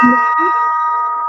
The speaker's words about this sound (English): He hurries to his bed as the chimes ring again. One. The hour is struck again by a large street clock.